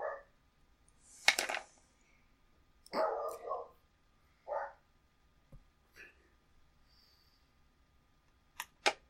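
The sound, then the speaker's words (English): A dog barks several times in short, irregular bursts, loud, with brief sharp clicks between barks and no talking. “I'm thinking about going berserker on this fucking dog.”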